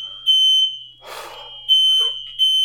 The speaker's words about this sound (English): Our fire alarm is going off.